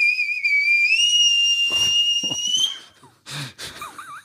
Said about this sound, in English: some momentous music for the question, please, with your mouth, just whistling. Loudly? No.